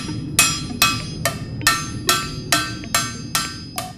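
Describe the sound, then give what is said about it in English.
Steady, evenly spaced hammer blows ring out on metal as the heated, deformed edges of a freshly pressed pan are hammered out by hand at a company making pans from scratch; about nine sharp metallic strikes at a regular rhythm, each with a bright ringing decay, no talking. “once the pan is pressed, then there's still some deforming that occurs around the edges, and so we heat it up and then hammer that out by hand.”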